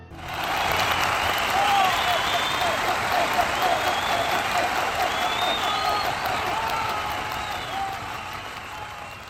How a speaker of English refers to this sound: Applause here in the studio as well. Deserved.